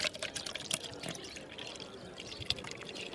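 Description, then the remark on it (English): Water pours out of a water carrier's bag in a steady, splashy stream broken by a few sharper drips and spatters, moderately loud, with no voices. “Say, do you have any water? Hang on. Look, there's a water carrier. One bag, please.”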